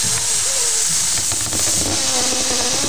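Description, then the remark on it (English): Steady, loud hiss of air rushing out of a deflating balloon, with a wavering, buzzy squeal that slides up and down in pitch for about three seconds, no voices. “Just go ahead and let the air out.”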